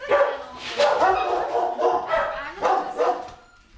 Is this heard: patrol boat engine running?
no